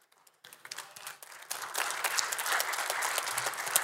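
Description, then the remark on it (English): A church audience claps in response to the preacher asking whether they know God is a God of justice, starting with a few scattered claps that quickly swell into steady, moderately loud group applause lasting several seconds, with no talking over it. “I got four claps and two amens.”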